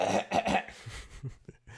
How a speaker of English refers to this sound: Let me clear my throat.